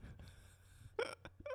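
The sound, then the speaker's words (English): A short burp right up against the microphone, followed by a couple of quick, clipped vocal bursts, all fairly quiet and close, with no talking. “Sorry, I suddenly podcast just burp into the mics.”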